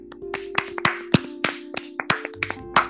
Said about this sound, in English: And that is all our shoutouts for today, guys. So let's get a round of applause for that.